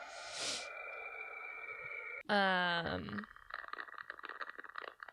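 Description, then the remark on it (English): Eerie sonified Saturn radiation measurements, their frequency brought down into audible sound: a steady whistling tone, then a loud abrupt chirp sweeping through stacked harmonics, fading into crackly, static-like warbling. No voices. “However, that's just when you take measurements of radiation and turn that into sound, like bring that frequency down so much”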